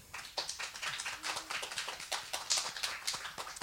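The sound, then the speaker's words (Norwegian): An audience at Litteraturhuset applauding warmly to welcome three panelists at a literary event about Rita Indiana, a dense, steady patter of many hands clapping that keeps up for the whole few seconds without fading, with no voices over it. “La oss gi dem alle tre en varm applaus.”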